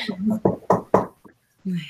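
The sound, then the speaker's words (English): Three sharp knocks on a wooden surface, knocked for luck, in quick, even succession, fairly loud, with a bit of conversation just before and after. “Knock on wood.”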